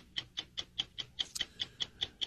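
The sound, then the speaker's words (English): A clock ticks steadily, about a dozen sharp, bright clicks spaced evenly at roughly five per second, heard alone with no voices. “That sound, my friends, is the clock ticking on the Ohio House of Representatives.”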